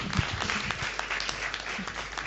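Steady audience applause in an auditorium welcoming two presenters, a dense wash of many hands clapping at an even level throughout, with no voices rising above it.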